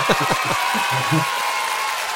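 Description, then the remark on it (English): Steady applause from a crowd welcoming the chief of the Racine Police Department fills the whole stretch as a dense, even clatter of clapping, with a few voices calling out briefly at the start. “Yes, I forgot your applause here. Let's get everybody get your applause here.”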